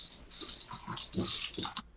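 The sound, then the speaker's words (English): A dog named Wednesday, just let in, her claws clicking and clacking across a hard floor in a quick, uneven patter of sharp taps, moderately loud, with no one talking. “I could hear the click clack.”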